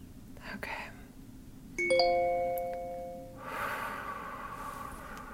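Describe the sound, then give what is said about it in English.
A bright, multi-tone electronic reminder chime rings once, its clear tones ringing out and fading over about a second and a half, with soft breathy noises before and after. “I thought I turned off that reminder.”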